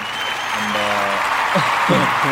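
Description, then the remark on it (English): A round of applause sound effect plays steadily in the background throughout, a dense wash of many hands clapping, with a brief humming tone and faint voices surfacing underneath toward the end. “And there's a round of applause playing in the background.”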